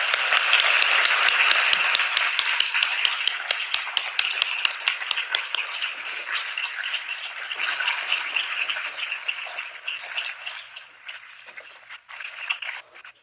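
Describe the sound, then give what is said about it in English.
An audience applauds steadily to welcome the evening's speaker, dense clapping at a strong level before gradually thinning and softening toward the end, with a few sharp individual claps standing out. “Join me in giving a round of applause for Nicole Hannah-Jones.”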